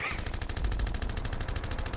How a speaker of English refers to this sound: But when they're cheering for me, it's gunshots.